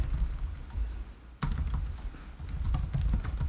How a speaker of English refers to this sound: Do y'all like the clicks of my keyboard?